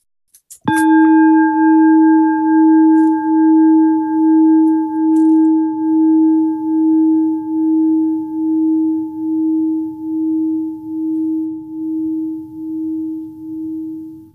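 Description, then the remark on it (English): A meditation bell is struck once at the conclusion of a gathering and rings out in a long, low, humming tone that pulses with a slow, steady wavering as it gradually fades, with fainter higher overtones dying away first. “May the sound of this bell ring throughout the universe, awakening all beings to joy and equanimity.”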